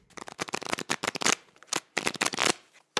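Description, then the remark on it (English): Playing cards are shuffled and dealt by a dealer at a card table, a pair face down to each player: rapid bursts of crisp, papery riffling in two busy flurries separated by a brief pause, ending with a quick card snap. No one speaks. “In response, a card slid toward me. A second slid past to the player on my left.”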